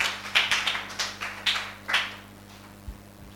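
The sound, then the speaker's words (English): An audience claps sparsely and unevenly to give the Lord a hand during a sermon, about nine soft claps over two seconds that fade out, leaving a quiet low hum with no talking. “Oh, are you clapping like you go to a funeral?”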